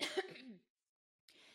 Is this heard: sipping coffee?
no